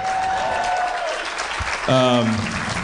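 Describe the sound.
A crowd breaks into steady, dense applause that fills the whole stretch, with a brief voiced whoop or cheer rising above the clapping partway through.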